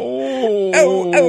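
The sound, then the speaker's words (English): A human voice imitates a dog: a drawn-out whiny tone followed by two short, sharp barks, spaced about half a second apart. “Bark.”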